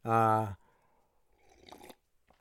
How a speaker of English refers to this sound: Take a drink of my coffee, you guys.